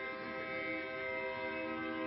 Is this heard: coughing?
no